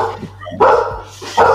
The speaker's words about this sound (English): Is that your dog? Dogs. Yeah. That's JR. He wanted to get on there. Oh, yeah. He's letting us know that he's okay.